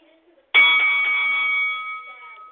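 A single loud bell strike rings out after a brief quiet moment to start a battle, its bright metallic tone sustaining and slowly fading over the next two seconds.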